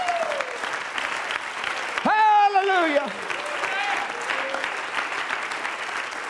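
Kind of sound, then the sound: crowd, audience applauding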